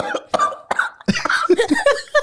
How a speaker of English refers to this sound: That dude was coughing like a motherfucker.